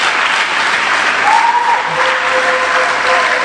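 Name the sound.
audience clapping and applauding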